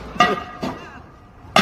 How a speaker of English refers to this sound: Wait, is that a frying pan or was that a helmet? That was a helmet.